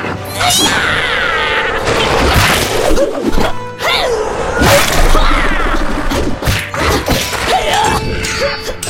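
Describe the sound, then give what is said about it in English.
Loud, chaotic flurry of repeated punches from a woman thudding and whacking into a man's testicles, coming in rapid irregular bursts with whooshes and crashes between them, while voices shout beneath the action. “She's punching his testicles like a punching bag!”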